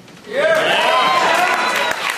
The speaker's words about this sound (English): Yeah! It feels very good, I guess. I guess you're applauding like the in memoriam on the Oscars. I hope there are some movies that get less applause than others.